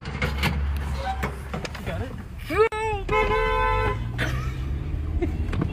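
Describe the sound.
A car horn honks once in a steady blare lasting about a second, loud, outdoors with some indistinct voices around it, as a singer drops a CD in a fan's mailbox before running off.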